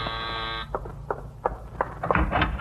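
A doorbell gives one harsh, steady electric buzz lasting about half a second, then cuts off, leaving a few faint scattered clicks and knocks with no one speaking.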